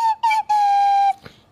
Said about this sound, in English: Should I break out my slide whistle and do a solo? Yes. Oh, shit. Yes. Yeah, do that.